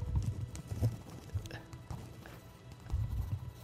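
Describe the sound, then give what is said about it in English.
Pencil and pen scribbling on paper: uneven bursts of dry, scratchy strokes that come in quick clusters with short pauses, fairly soft and continuing for a few seconds. “Yours sounds better. Well, because mine's a pencil. Yours is a shitty pen.”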